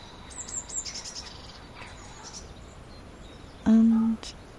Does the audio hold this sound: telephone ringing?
no